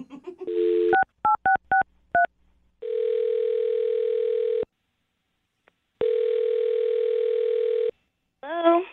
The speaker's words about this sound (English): I'm gonna dial her phone number right now, man. Here we go.